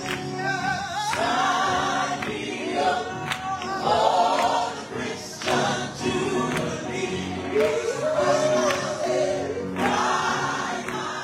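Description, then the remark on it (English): A crowd of voices, with singers coming down from the stands, sings together in a spontaneous gospel sing-along as a pianist plays while judges tabulate scores; sustained and full, with scattered sharp accents like claps cutting through the steady, loud music. “While the judges were tabulating the scores, we asked one of the pianists to play a bit and a spontaneous gospel sing-along broke out.”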